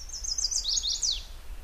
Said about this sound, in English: has chosen to study the chestnut-sided warbler because of this song, the one males use to attract females.